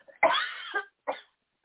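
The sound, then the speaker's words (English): A harsh cough bursts out loudly and trails off, followed a moment later by a shorter, softer second cough, with no talking around them. “I have to cough again, sorry.”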